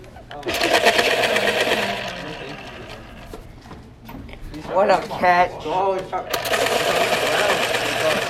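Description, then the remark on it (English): An electric pencil sharpener sharpening pencils grinds in two loud, steady whirring bursts, one at the start and one at the end, with people talking briefly in the pause between them. “Sure, I'll sharpen it.”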